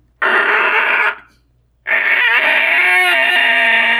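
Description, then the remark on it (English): An imagined call of a velociraptor, a late Cretaceous dinosaur: two loud, harsh, rasping screeches, a short one followed after a brief pause by a longer one that warbles and wavers in pitch, with no talking. “I have often wondered what sounds they might have made. Something like this, maybe?”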